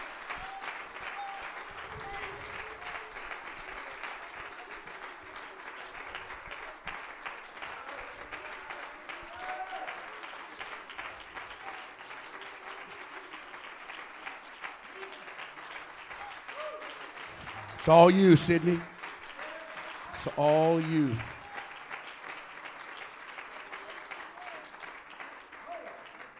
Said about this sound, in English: Clap your hands. Clap your hands. Clap your hands. Clap your hands. Clap your hands.